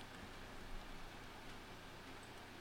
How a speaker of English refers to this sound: Oh, it's raining out.